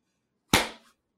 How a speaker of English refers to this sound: Please, I'm gonna clap and do the thing so we can like see the spike, and we're gonna try to fix it.